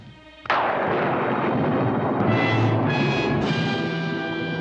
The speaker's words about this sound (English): I believe in this movie they are also using the famous sound effect Castle Thunder, which is the lightning and thunder sound effect, the tropiest such sound effect.